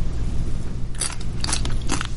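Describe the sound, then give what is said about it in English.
Loud crunching of Tropical Punch flavored crackling hard candy that gives little sparks in the mouth, bitten and chewed in several sharp crackling bursts in quick succession over a steady low hum, with no talking. “It's crunchy. And there are little sparks. You can feel the sparks in your mouth.”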